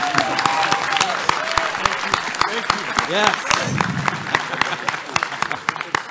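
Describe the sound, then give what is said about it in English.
A live audience gives a round of applause as a speaker's time is called, a dense patter of many hands clapping throughout, while a few voices speak briefly over it. “And that's your time. Round of applause.”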